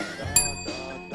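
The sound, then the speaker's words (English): A single bright bell ding strikes sharply and rings on with a high, shimmering tone that slowly fades, heard over a steady low background murmur. “Somebody hit the bell.”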